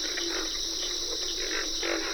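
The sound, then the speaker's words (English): A steady, dense trill of crickets fills an outdoor night chorus at a wet grassy prairie in the Okefenokee National Wildlife Refuge, Georgia. Deep, grunting pig frog croaks and carpenter frog calls pulse irregularly underneath. Lang Elliott and Ted Mack recorded it for the CD an album. “Pig frogs are the featured crooners at a wet grassy prairie in the Okefenokee National Wildlife Refuge in Georgia.”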